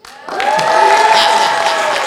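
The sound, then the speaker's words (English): After a brief quiet moment, a crowd breaks into loud, sustained applause, with cheering and whooping voices rising over the steady clapping. “We brought in the applause instead of the slurp.”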